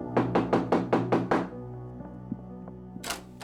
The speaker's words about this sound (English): She pounded on their neighbor's door.